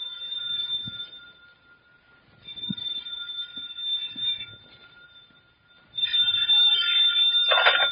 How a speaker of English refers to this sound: Then the phone rang.